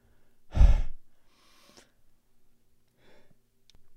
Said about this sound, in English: Sorry, I had to sneeze.